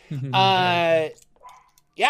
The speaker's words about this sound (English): There's a dog barking.